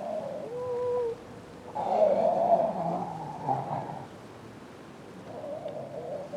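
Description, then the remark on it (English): Seals call out with harsh, guttural screams: a wavering moan first, then a loud, raspy roar lasting a couple of seconds, followed by a softer drawn-out cry. No talking. “They make like purring noises, and they like have guttural screams at each other.”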